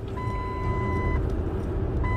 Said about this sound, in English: Alright, truck, we're trying to record. Chill out. Man. Calm down with your beeping ass.